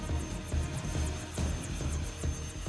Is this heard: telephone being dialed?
no